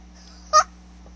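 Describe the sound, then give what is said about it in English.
A squeaky rubber duck toy gets squeezed once, giving a single short, bright, honk-like squeak, fairly loud, over a faint steady hum. “Ducky duck being squished to death.”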